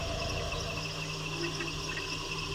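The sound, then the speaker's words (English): A dense night jungle insect chorus, heard from up in a tree: steady, overlapping high-pitched buzzing and trilling that blends into an unbroken, hissing wall of sound at an even, moderately loud level, with no voices. “Oh, just this cacophony of sounds. It's just this loud, sort of almost white noise.”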